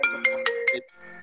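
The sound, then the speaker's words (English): A phone ringtone from an incoming call chimes in four quick, evenly spaced electronic bursts with steady tonal lines, then fades into a softer sustained tone, fairly loud with no talking. “And shout out to whoever's calling you on the phone. That just scared the shit out of me.”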